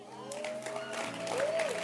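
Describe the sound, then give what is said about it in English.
A church audience claps after an announcement that the service will start at 7 p.m., a dense, steady patter of overlapping hands for about two seconds, moderately loud, with a sustained wavering tone running underneath. “No, you don't clap. I'm not even interested in your clap.”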